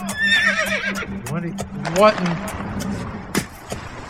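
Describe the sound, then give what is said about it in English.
A horse whinnies loudly, a long quavering neigh that rises and falls over about two seconds, followed by snorting and scattered sharp knocks against a noisy background. “Slow down, horse.”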